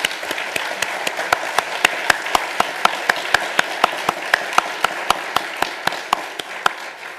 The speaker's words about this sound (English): So let's applaud.